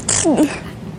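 One sharp sneeze: a quick hissing intake burst followed by a short voiced exhale that trails off, with nothing else but faint background noise afterward.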